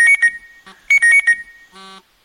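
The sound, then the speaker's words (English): A loud electronic alarm clock rings in quick bursts: two rapid beeps, a short pause, then three more, followed by a brief buzzy tone. It sounds clear, with no talking. “Is that my alarm?”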